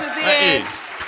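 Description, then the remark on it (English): A brief burst of audience applause, a dense wash of clapping with a voice calling out over it in the first half before the noise tapers off. “Please give yourselves a big round of applause.”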